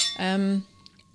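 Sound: wine glasses clinking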